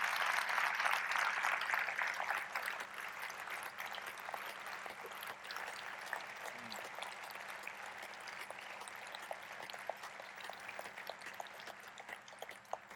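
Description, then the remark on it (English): A large audience in a small theater applauds veterans continuously for about thirteen seconds, a dense, steady wash of clapping that is loudest at the start and then holds at a slightly lower level, with no voices. “Applause seems so trite, but please understand that applause comes from a deep heart of gratitude towards what you have done and provided for us in our country and in our world.”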